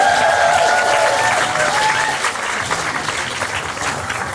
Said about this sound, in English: Big round of applause